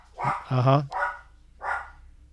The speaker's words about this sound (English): His question, how does a podcast that's just starting out, such as The Ground Loop, find a budget to support such high quality sound effects like that barking dog right now that's barking? Oh, yep.